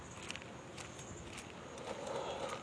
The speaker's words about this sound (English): Footsteps.